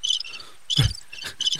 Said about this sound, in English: But in the meantime. Crickets. It was so quiet.